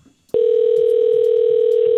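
After a brief quiet moment, a loud, steady telephone dial tone switches on abruptly and hums continuously without a break until the end, as a phone call is being placed.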